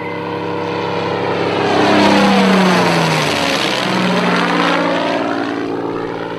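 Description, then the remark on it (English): Spitfire K9942's Merlin II liquid-cooled 27-litre piston engine roars past overhead, a loud, rich droning growl that swells to a peak and then drops in pitch as it passes, with no voices. “K9942. Fitted with a Merlin II liquid cooled 27 litre capacity, named after the bird of prey known colloquially as the pigeon hawk, swift flyer, skilled hunter.”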